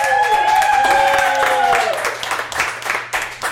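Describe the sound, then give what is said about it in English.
A live studio audience bursts into loud, dense applause with whoops and cheering voices at the start, the clapping thinning into scattered, uneven claps toward the end. “You can't make up that kind of crowd sound.”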